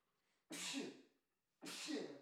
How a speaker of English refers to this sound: Oh, excuse me. Here comes a sneeze.